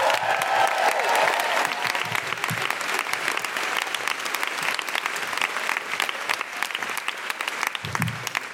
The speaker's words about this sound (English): If you would, please, a round of applause. Welcome to the stage, your wonderful Deborah Francis White!